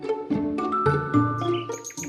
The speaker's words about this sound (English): Ah, spring. It's that beautiful time of year when the flowers come out and the birds start to sing.